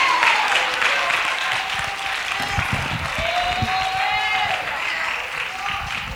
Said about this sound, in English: Clap your hands and bless him.